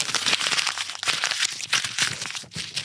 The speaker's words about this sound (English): Throwing it away. Very good Foley there. Putting that straight in the garbage. It's real life paper being real life thrown away and being put into the real life garbage.